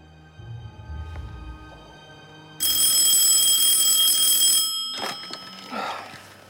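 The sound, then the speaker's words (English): A phone alarm rings out in a loud, bright, high-pitched electronic tone for about two seconds, then cuts off as the phone is slapped to silence for a snooze, leaving a few softer shuffling sounds and low hum. “Sleep answers the phone, just as I sleepily slap my phone to silence to give me another snoozy respite.”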